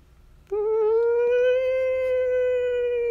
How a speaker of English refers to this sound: Whimper.